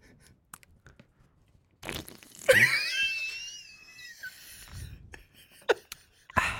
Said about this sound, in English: I also have some coffee here. I'm going to take a sip.